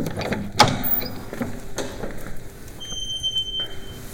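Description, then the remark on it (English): A door opens with a sharp latch click, followed by a soft mechanical rumble and a faint high squeak as it swings. No one speaks. “I'll hit the door.”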